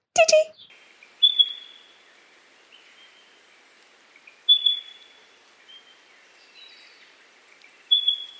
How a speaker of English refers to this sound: I was sitting in my garden in Hepburn Springs and a little spotted partilope landed on a branch just next to me and it started making its call. It went book, diddy, book.